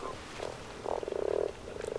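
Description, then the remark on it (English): Many toads croak at a pond at night in rapid, pulsing trills, several calls overlapping one after another with a steady, buzzing rhythm and no voices. “If I was counting, I would have got up to 100 toads by now, or 70. There are millions in this one pond.”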